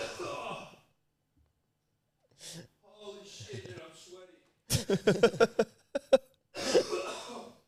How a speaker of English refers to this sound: Coughs are contagious, like yawns.